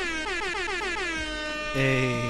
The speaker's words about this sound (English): Hey. Oh. Last air horns of the year.